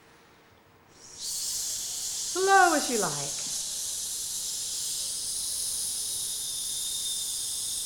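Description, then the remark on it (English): In a breathing exercise, a long, steady hissing 'sss' breath release on an S starts about a second in and holds evenly to the end, with a brief spoken phrase over it early on. “We're going to do three long breath releases on an S to really feel the organization of the breathing muscles.”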